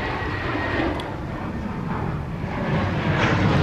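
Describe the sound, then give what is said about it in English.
A steady, loud engine roar from an airplane passing overhead near Luton airport, a broad rumbling wash of noise that holds constant and swells slightly toward the end, with no voices. “I'm just enjoying the sound effects of Luton.”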